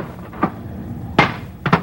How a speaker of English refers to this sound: Look, sailor, this gun is made to shoot fast, and that's the way you'll shoot it. When I say load, don't pick up that shell and cuddle it into the breech. Grab it up and slam it in.